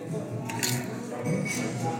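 Crisp, crunchy snipping of scissors trimming a dried batch of plant material, a few bright bursts spaced apart over a low, steady background hum.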